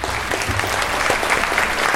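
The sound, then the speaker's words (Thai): A crowd applauds steadily, a dense wash of many hands clapping at an even, fairly loud level throughout, with no voices standing out, at the host's request at the start of the show Thae Prakaden. “ปรบมือหน่อยฮะ”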